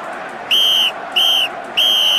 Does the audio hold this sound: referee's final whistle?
yes